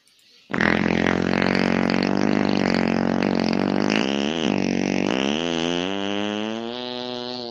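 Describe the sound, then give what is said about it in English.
A fake fart sound bursts in suddenly and drones on for about seven seconds, loud and buzzy with a wavering, sliding pitch, sounding unnaturally long and steady. “I'm almost positive that that was a fake fart.”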